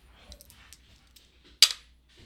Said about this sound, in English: Let's roll our dice and see how many episodes we're skipping. Roll them bones.